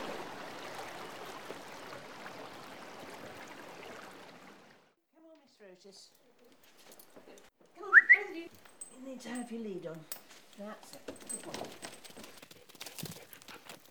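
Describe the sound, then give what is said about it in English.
The River Salandrin rushes steadily below a south-facing balcony overlooking woodland for several seconds, a continuous broad wash of flowing water that then cuts away, followed by scattered voices and faint outdoor sounds. “And this balcony faces due south, and it hangs right over the River Salandrin.”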